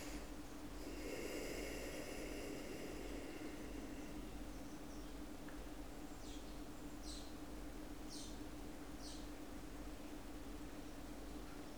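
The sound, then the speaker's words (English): Faint birdsong over a steady hiss of background noise, a sustained warbling phrase followed by a few short, high chirps spaced a second or so apart. “Great to hear the birds singing so much this time of year.”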